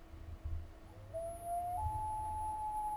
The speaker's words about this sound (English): Common loon. That's. Yeah? That's a loon, yep. It sounds crazy. Crazy as a loon.